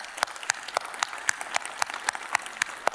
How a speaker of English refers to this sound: We have had 9,000 plus gospel conversations. Can we cheer for that as a church? Come on, let's cheer for that.